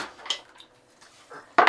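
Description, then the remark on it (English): A D100 die is rolled in a game, clattering across a hard surface in a few quick, bright clicks and rattles, ending with a sharper, louder clack as it settles; no one speaks. “Go ahead and roll the D100.”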